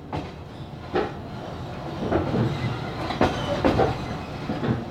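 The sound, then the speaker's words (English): A train heading towards the Ukrainian capital rolls steadily along the rails, a continuous low rumble punctuated by rhythmic clicking and clacking of wheels over track joints, heard from inside a carriage with no voices. “This September, Zani and Arkady once again boarded a train and headed towards the Ukrainian capital.”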